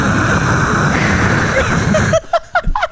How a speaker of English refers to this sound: Yo, what a great ad. Campaign for white noise machines. White noise machine.